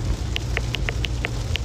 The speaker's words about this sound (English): I am driving home in the rain.